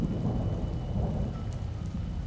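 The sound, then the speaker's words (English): Heavy rain pours down steadily while deep thunder rumbles low underneath, a dense, continuous storm wash at a fairly loud, even level with no voices. “I will say, as you do wait, the rain outside begins to pick up, and before it even gets dark, there's a full thunderstorm going on.”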